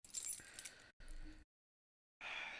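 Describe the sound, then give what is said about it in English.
A beer bottle cap is pried off with an opener: metallic clinks and a scraping snap, a brief silence, then a steady carbonated hiss. No one speaks. “Do you have an opener?”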